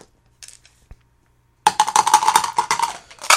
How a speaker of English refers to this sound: One last word here, and the roll of the dice gives us 1, 3, 1, 5, 4.